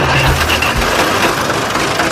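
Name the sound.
tractor engine running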